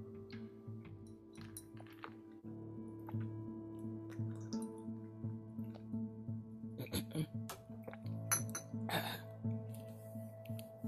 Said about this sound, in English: So I need to drink some more water real quick.